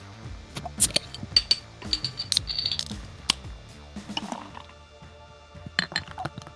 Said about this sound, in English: you sound like you had a good pour on over there. Of course I did.